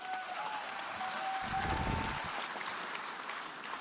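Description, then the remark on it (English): An audience applauds steadily, a dense wash of many hands clapping at once, fairly loud and sustained throughout, with a brief low rumble partway through. “All these fucking cucks in the audience just applauding that shit.”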